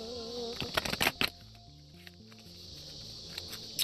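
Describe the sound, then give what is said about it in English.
A deck of Oracle Healing cards being flash shuffled: a quick flurry of papery riffling and slaps, then a few scattered soft flicks, over a quiet steady musical background. “So I'm shuffling right now. Flash shuffle.”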